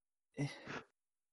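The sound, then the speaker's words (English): A single short sneeze, fairly loud: a brief voiced intake that bursts into a breathy, hissing rush of air, lasting about half a second, with silence around it. “Sorry, I had to sneeze.”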